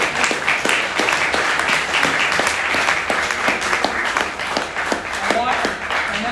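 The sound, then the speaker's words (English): A crowd applauds steadily for several seconds, a dense patter of many hands clapping at once with sharp individual claps popping through the wash, loud and sustained throughout. “I'll tell you why it felt good to clap.”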